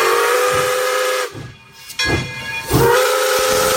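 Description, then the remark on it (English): A loud steamboat whistle blows in long, breathy blasts with a rich hissing tone, briefly dropping away midway before sounding again at full strength. No one speaks. “That's a steamer.”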